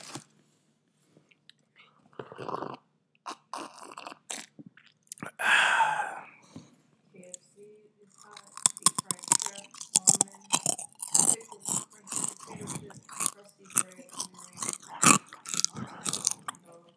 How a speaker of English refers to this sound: It's the crunch in the cheese.